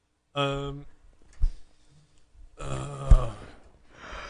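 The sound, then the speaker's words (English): A big, drawn-out yawn: a short voiced groan, a pause with a soft knock, then a longer breathy, straining exhale that trails off. “The biggest yawn on record.”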